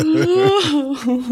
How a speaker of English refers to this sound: Sorry, I was yawning. Yeah, thanks. Because the show's so great that she yawns. In my defense, it's like 9 o'clock in the morning.